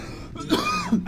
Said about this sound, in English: I was at a bar last night. It was smoky. That's why I keep on coughing. I'm not sick